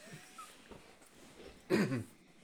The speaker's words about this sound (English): I gotta wet my whistle. Why do you whimper when you drink? What? Why do you whimper when you drink? For the comic effect.